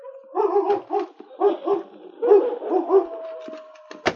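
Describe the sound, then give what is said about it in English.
A big gray wolf named Butch growls in a woodshed in a series of short, throaty bursts, grouped in quick rhythmic pairs, fairly loud, then trails off into a thin whine and a sharp final snap. “As they opened the door of the shed, Butch's growls died away, and the big gray wolf stepped warily out into the open.”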